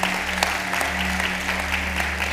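An audience claps together for people who have just given a performance, in a steady, dense burst of applause, many overlapping hand claps forming a continuous wash of sound over a low steady hum, with no speech.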